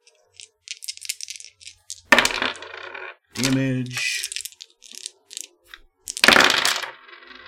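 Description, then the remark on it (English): Dice clatter and tumble across a hard tabletop in two sharp rattling bursts, with a voice speaking briefly between the rolls and some light clicking at the start. “And she did some dice, so damage.”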